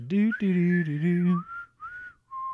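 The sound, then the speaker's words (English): A person whistles the melody of a song, a short, cheerful tune in a few sustained, gliding notes with brief pauses between them, clear, right after a brief hummed vocal phrase. “I don't know why I'm doing the whistle part.”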